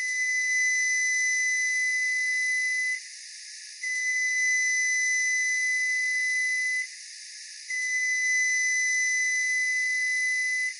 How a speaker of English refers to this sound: When the sound is meant to tell you something, it's called an intentional sound. Here are the three long beeps of a newer model Frigidaire microwave.